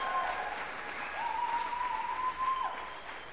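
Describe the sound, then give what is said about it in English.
An audience applauds a short musical sample just played, in a steady wash of clapping that holds at an even level for a few seconds, with a thin sustained tone ringing faintly underneath. “I think that deserves a clap, right?”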